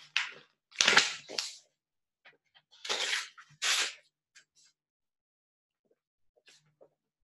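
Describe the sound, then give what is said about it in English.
Dry scratching strokes of a pen on a bit of paper come in a few short bursts separated by quiet pauses, followed by faint, scattered ticks, with no one talking. “I'm just going to write something on a bit of paper.”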